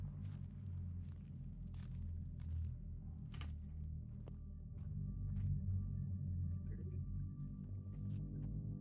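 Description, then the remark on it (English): Soft, irregular shuffling footsteps from the other room scrape now and then over a steady, heavy low rumble, with faint higher hums running underneath and no one speaking. “Now, as you focus on the other room, you do hear shuffle of feet.”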